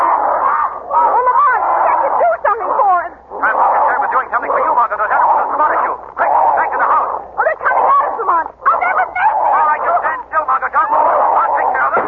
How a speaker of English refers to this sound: Those two figures running after Whittington. It's the dog, the giant dog. They're chasing him, Lamont. Oh, they're tearing to pieces.